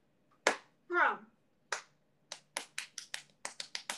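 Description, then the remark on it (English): Crisp hand claps from one or two people: a few scattered claps with a brief high vocal squeal among them, then a quick run of about nine claps that gradually speeds up. “So thanks for the thanks for the applause.”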